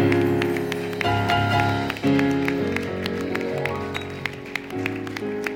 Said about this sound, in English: Somebody give the Lord a clap offering, everyone.